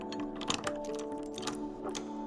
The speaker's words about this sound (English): I hear the gravel under the tires as the driver turns off the main road and stops in front of a chain-link gate. He hops out of the car and starts fumbling with the keys to the padlock.